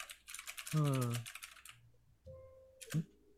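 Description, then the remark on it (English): Rapid clatter of computer keyboard typing in quick bursts, with a voice briefly overlapping mid-way and a short pause before a final flurry of keystrokes. “Is that what it's is that called? Real typing?”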